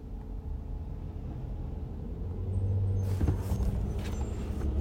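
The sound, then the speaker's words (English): Steady low rumble of a car interior while driving on a hot, sunny day, a continuous droning engine and road noise that swells slightly louder partway through, with a few brief rattling bumps and no voices. “The sun is making it hot, and I'm in the car, so I don't know.”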